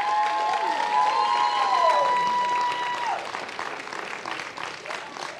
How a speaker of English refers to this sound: Ladies, can we encourage the men? Because they're not wannabes, they're winners. Can you give the men a loud round of applause as I land the plane?